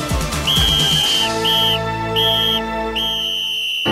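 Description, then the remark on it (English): Several shrill whistles blow in repeated long blasts, loud, overlapping in a noisy burst with a rumbling crowd-like din underneath. “Now, whistle posse, make some noise!”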